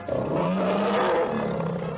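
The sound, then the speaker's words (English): A loud, sustained tiger roar in an advertisement for SO Extra gasoline, rumbling for about two seconds, deep and growling with a rough, throaty texture, alone with no talking. “So see your SO dealer today and let him uncage that tiger for you.”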